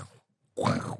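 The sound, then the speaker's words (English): A voice imitates a snarl by saying 'wow' while making a pig noise: a short breathy onset, a pause, then one loud, rough, guttural grunting burst lasting about half a second. “You say wow, but you make a pig noise at the same time.”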